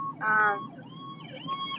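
ambulance siren passing by

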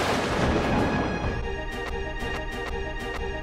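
thunderstorm sound effect

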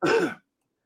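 sneeze

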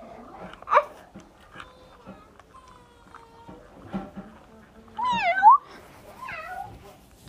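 cat meowing

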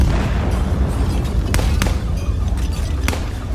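distant explosions

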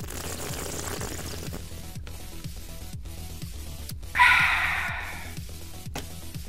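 water being poured

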